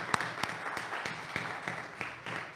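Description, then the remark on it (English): A church audience applauds steadily to thank its members for their serving, a dense wash of many hands clapping at once with a few sharper claps standing out, holding an even, moderate level throughout with no one speaking. “And I want to applaud you.”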